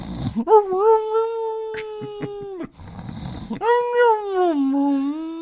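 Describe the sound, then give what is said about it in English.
A human voice imitates a dog's howl in two long, sustained wavering notes, each rising at the start and sliding down at the end, with a brief pause between them. “My dog was even howling with you.”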